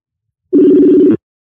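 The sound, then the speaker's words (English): A single burst of telephone ringback tone on an outgoing call, a steady low buzzing tone lasting just over half a second, fairly loud with silence before and after. “You hear it ringing?”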